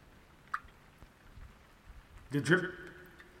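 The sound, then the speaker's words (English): Water drips with a small, bright plink, followed a couple of seconds later by a louder, fuller drop, with low background noise between them. “The drip says time is moving forward, but I feel like time is moving backwards.”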